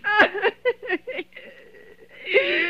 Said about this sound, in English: Oh, let it ring. Let it go on ringing. It's a trick of some kind. And I won't answer it. I won't. I won't, even if it goes on ringing all night. I won't.